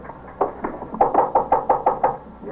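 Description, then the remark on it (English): A rapid series of about eight knocks on a lieutenant's wooden office door inside the 21st Squad's second-floor office, sharp, coming in a quick, steady rhythm after a couple of lighter opening raps, with no voices. “Inside the office of the 21st Squad, I walked him straight to Lieutenant King's door.”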